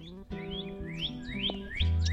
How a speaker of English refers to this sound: As usual, the increased chirping of the songbirds announced her arrival.